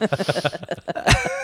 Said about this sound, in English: I cough for 1 second and you jump in there.